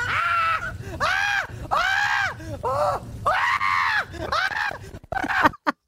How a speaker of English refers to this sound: It was full on. It was absolutely full on roller coaster, but I loved it. I screamed my whole way around it and then loved it. Okay, for those who haven't seen it, here's a little listen.